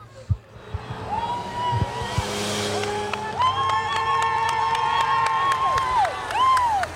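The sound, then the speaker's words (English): A line of cars following a race breakaway snakes around a bend, with long, overlapping horn blasts sounding again and again over a cheering roadside crowd and the rush of traffic. “There goes the breakaway. They've snaking around the bend. And then a whole bunch of cars.”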